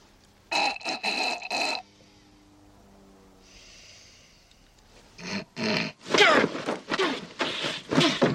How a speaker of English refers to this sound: If I don't clear my sinuses, I'll snore all night.